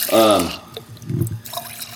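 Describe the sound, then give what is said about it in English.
A short burst of liquid pouring into a glass, moderately loud, following a brief voice at the start, with a soft trickling texture as it fills. “That was nice for you to pour me a little bit.”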